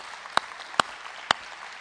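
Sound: audience hand clapping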